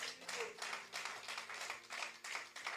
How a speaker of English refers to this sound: Amen. If I'm preaching good, give a clap offering unto God.